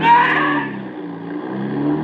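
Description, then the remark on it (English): A car engine revs hard as the vehicle accelerates away, a loud burst of roaring engine noise at the start that settles into a steady, slightly quieter drone. “As soon as he opens it, I step on the gas.”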